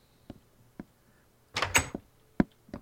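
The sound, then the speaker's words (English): A video-game door is closed behind the players: a couple of soft clicks, a short creaking, scraping swing, then a solid thud as it shuts, fairly loud with no talking. “In the habit of closing doors behind us when we visit places.”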